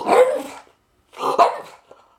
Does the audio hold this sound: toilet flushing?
no